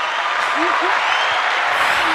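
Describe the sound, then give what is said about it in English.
A steady burst of applause sound effect played on a radio show fills the whole moment, a dense, even clapping sound at a constant loud level, with faint voices murmuring underneath. “That deserves some applause”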